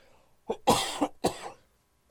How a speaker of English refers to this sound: I'm just coughing to death. Oh, coughing.